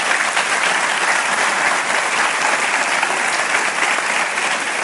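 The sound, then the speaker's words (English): Loud, sustained applause from an audience for a panel at an evening event, a dense steady wash of many hands clapping that holds at an even level throughout with no voices on top. “But before we do that, would you give our panel a word of applause?”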